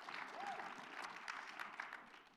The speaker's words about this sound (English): See that? You clapped.